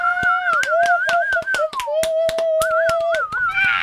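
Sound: cheering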